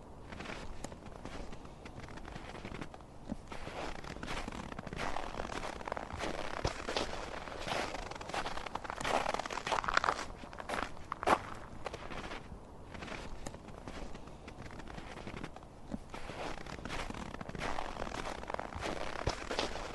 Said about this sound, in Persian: یک دقیقه به صدای قدم زدن در برف گوش میکنی.